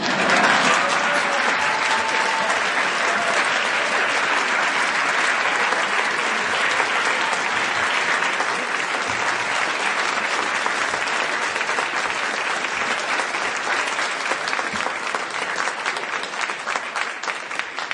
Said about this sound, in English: Now is the appropriate time for applause.